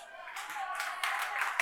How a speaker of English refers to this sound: All right, if you're clapping right now, notice, all right? Notice if you're clapping right now.